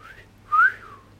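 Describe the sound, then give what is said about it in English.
A pet bird whistles a single clear note that swoops upward and then slides back down, like a wolf whistle, preceded by a fainter rising whistle. No one talks. “Can I get a wolf whistle out of you?”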